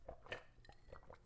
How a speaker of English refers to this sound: Let me take a quick sip of lemonade.